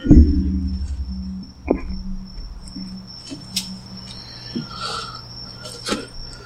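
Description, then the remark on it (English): A lighter is flicked several times to light a mosquito coil that has gone out, four sharp scratchy clicks at uneven intervals, over a steady low hum and a faint high-pitched whine. No one speaks. “Can I grab somebody's lighter to light this mosquito coil? Because it's gone out.”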